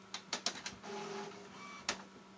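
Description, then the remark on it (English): A printer running its alignment cycle: a quick series of mechanical clacks, then a steady motor whine, ending with one more sharp clunk. No voices. “Sorry, my printer just decided to align itself.”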